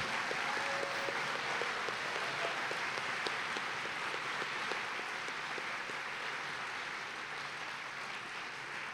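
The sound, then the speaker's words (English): A crowd at an evening school performance event applauds the students steadily for several seconds, a dense, even wash of clapping with scattered individual claps standing out and no voices. “So just give a huge round of applause to all the students tonight for everything they've put together.”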